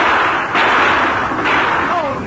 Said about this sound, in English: As Bowlegs and the professor fired, the Lone Ranger's Colts roared. Silver bullets smashed both weapons, but Bowlegs' shot struck the sheriff.